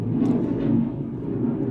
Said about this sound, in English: Gotta stand by. Okay, got a low flying jet hanging overhead.